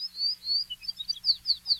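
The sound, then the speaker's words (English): A yellow-fronted canary, a non-native bird of Hawaii's lowlands, sings a rapid, bright warbling song of high sweet notes and twittering phrases, clear with no voices. “Yellow-fronted canaries are also one of the many non-native bird species that inhabit the lowlands”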